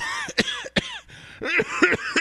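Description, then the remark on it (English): A deliberately forced, staged cough: several sharp, raspy bursts in quick succession, fairly loud, with a brief pause midway and no talking. “This is a fake cough, by the way.”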